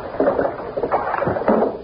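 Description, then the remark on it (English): Sea waves sloshing and lapping in three soft, rhythmic surges about half a second apart, a muffled, mid-pitched wash heard through an opened window, with no one speaking. “The sound of the waves will lull you.”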